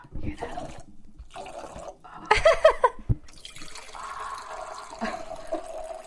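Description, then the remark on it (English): A drink is poured into a glass in several short splashing bursts with drips, then a steadier stream that rises slightly in pitch as it fills. Faint voices murmur in the background. “You can always pour more later.”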